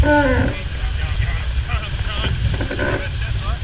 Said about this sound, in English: And a helicopter.